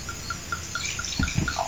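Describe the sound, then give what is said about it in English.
Sweet wine from a Cave Spring half bottle pours steadily into a glass, a soft continuous splashing trickle with a faint, regular chirping tone repeating in the background. No one speaks. “if you can hear that pouring into the glass.”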